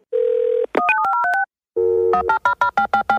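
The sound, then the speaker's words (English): A steady telephone dial tone hums briefly, then a quick run of keypad dialing beeps, another held tone, and a fast series of repeated pulsed beeps. Clear, no voices. “Don't hang up that phone.”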